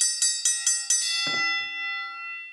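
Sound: bell ringing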